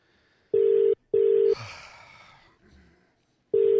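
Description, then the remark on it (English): Steady electronic ringback tones pulse through a phone line on an outgoing call placed live on the show Cooking with the Commish: two long buzzing rings, then a pause with faint rustling and breath, then another ring starting. Clear, with no talking. “Well, let's see if he picks up.”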